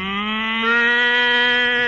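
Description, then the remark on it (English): A cow in a cattle car on a train lets out one long, drawn-out moo, loud, holding a steady droning pitch that swells slightly toward the end, with no talking over it. “Kingfish, you call these nice accommodations riding in a cattle car?”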